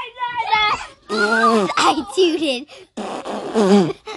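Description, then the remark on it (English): A series of drawn-out, wobbly fart noises, fairly loud, arrive in several bursts over a few seconds, interleaved with a young child's vocalizing. “I tooted, and I burped.”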